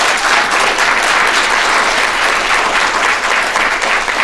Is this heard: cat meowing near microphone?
no